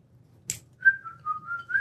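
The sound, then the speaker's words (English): A short breathy puff, then someone whistles a brief melodic tune from a Disney song, the clear tone stepping between a few notes over a faint low background hum. “Wow, you went with a Disney song, too.”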